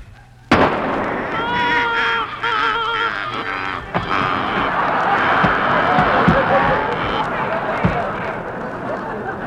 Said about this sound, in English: Oh, my goodness. Jeepers, he shot a flock of ducks. Well, I'll be darned.